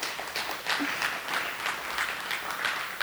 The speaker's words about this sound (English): Let's give the Lord a big hand clap this morning.